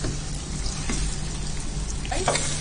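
Potatoes sizzle steadily in a hot pan, a close, continuous crackle and hiss with a low background hum and a brief faint clink near the end.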